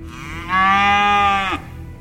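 A cow lets out one loud, drawn-out moo lasting about a second, steady in pitch before dropping off at the end, with no voices and only a faint background hum.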